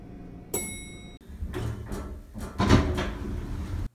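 A bright electronic chime rings once, followed by a few seconds of rumbling, sliding mechanical noise as elevator doors open on the fifth floor at CH Advertising; no voices.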